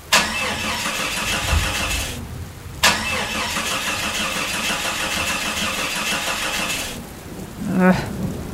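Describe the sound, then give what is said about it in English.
A car engine in England cranks over and over without catching: a two-second grinding attempt, a pause, a longer four-second try, then a brief final sputter, all loud with no talking. “First Aunt Rebecca, then the mobile, then the car.”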